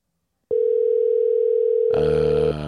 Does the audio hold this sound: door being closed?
no